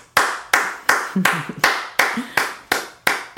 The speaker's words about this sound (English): A round of applause. Y'all done did something right.